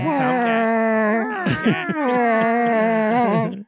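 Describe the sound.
A person's voice imitates a yowling cat in heat: a long, loud, wavering nasal wail with a brief warbling break in the middle, then sustained again for several seconds.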